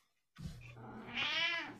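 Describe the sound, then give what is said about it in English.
A single drawn-out cat meow, fairly clear, rising in pitch and intensity toward a strained, whiny peak before tapering off. No one talks over it. “Meow.”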